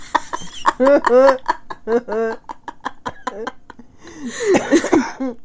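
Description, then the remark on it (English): A person talks for a few seconds, then breaks into a short, rough fit of coughing, a couple of harsh bursts near the end. “So much that she's like coughing about it.”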